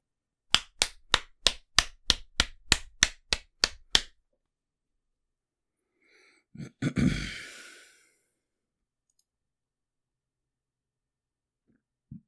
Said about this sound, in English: I'm going to clap real quick for a marker.